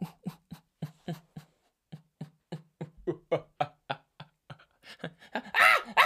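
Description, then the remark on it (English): A person imitates a monkey with a run of short, rhythmic hooting grunts that grow quicker and louder, ending in a harsh, high-pitched screech. “That was a monkey imitation, by the way.”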